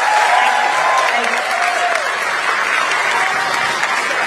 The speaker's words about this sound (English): Yeah, she literally motions the crowd to give her a standing ovation.